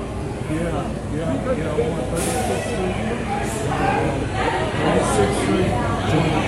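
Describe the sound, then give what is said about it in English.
Steady rumble of a subway car in motion while many voices chatter at once, a continuous crowded hubbub with occasional sharper bursts of noise. “If you're the subway operator, you just call it a day right there, bro.”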